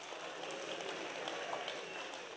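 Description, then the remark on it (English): Thin, scattered clapping from a small crowd, a steady low patter of hand claps with no strong peaks, fairly quiet and continuous throughout, as the audience claps their hands for Tinkerbell to say they believe in fairies. “You've got to clap your hands.”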